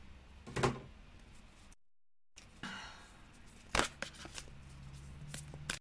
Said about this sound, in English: Let me shuffle these again because every moment different. I know I shuffled them already, but gotta shuffle them again. Well, let me shuffle them because cards are coming out. They're flipping out. One shuffle. Two.